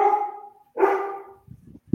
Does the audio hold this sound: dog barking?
yes